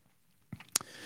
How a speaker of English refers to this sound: Sip of the day.